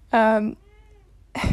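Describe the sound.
A single drawn-out meow from a cat inside a closet sounds out clearly, trailing into a faint fading whine before a person starts talking at the end.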